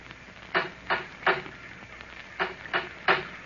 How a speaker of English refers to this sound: I knocked on the door and then waited.